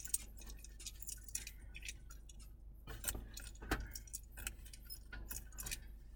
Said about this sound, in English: Bro, I gotta get these keys out of this bitch.